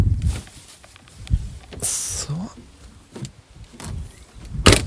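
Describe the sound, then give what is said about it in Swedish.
Rustling and fabric scuffing as a backpack is pulled out of a car parked beside a lake, Remmasjön, with a few soft thumps, a sliding scrape and a sharp bump at the end; a voice briefly speaks. “Ska vi se, jag ska ta min ryggsäck här bara.”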